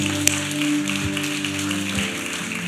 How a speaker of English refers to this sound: Can we give the Lord a big hand clap, amen, somebody?